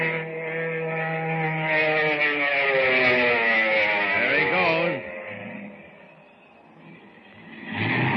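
A seaplane comes in to land on the water, its propeller engine droning loudly with a steady, buzzing hum, its pitch wavering and sliding down before the roar drops away, then swells again briefly at the end.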